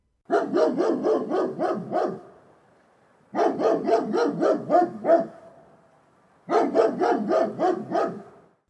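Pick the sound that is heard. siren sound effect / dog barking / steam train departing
dog barking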